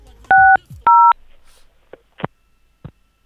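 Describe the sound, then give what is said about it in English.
Two loud telephone keypad tones, each a short steady dual-pitched beep, sounded one after the other as a man presses the phone's buttons, followed by a few soft scattered clicks and taps in an otherwise quiet line. “That was him tracing me. That was him pressing the buttons.”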